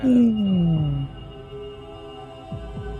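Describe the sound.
A blue whale call: a loud, low, tonal moan that slides steadily downward for about a second, followed by quieter rumbling tones and a couple of faint low pulses.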